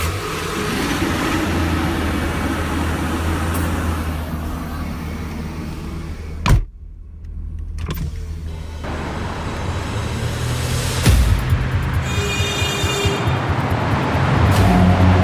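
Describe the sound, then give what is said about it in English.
A car door thuds shut, then a truck engine cranks to life at the start of the day in the suburbs of Washington, D.C., and settles into a steady rumbling idle, with a low hum throughout and no one speaking. “Then I start my truck.”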